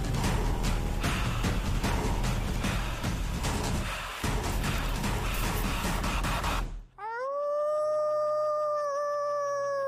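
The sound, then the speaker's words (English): After several seconds of loud, dense, noisy sound, a woman sitting in the woods lets out a long, sustained wolf-like howl, clear, rising slightly in pitch and holding steady to the end. “So now she's sitting in the woods and howling.”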